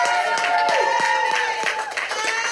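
An audience at the live show Off the Reels applauds steadily, dense overlapping claps forming a bright, continuous wash with a few sharper individual claps standing out, loud throughout and with no one speaking over it.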